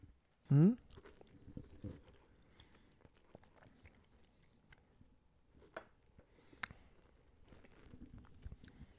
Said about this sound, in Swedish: Ja, men vi kan väl ta en tugga innan, medan brödet kanske är lite varmt i alla fall.